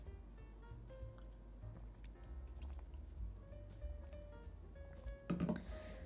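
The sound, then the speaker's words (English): Someone quietly drinks water during a break from talking, with soft wet sipping and swallowing sounds and a brief, slightly louder gulp near the end. No one speaks. “The water break, please.”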